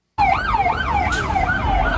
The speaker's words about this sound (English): I just want you to watch as you see these cars going by. You don't see anybody throwing anything at these cop cars, but I want you to pay very close attention at the last vehicle that drives by. Watch this.